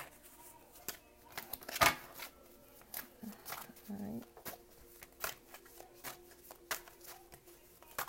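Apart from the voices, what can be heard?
shuffling tarot cards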